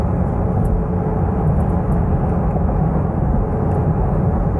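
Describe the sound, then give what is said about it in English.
The V6 engine of a Nissan Pathfinder SUV driven in sport mode drones steadily with a dense, low rumble at an even loudness throughout, with no clear rise or fall in revs and no voices. “We have to enjoy these internal combustion moments while we can. So yeah, this is sport mode, and I'm going to dial up the fuel economy right now, let you know how we're doing.”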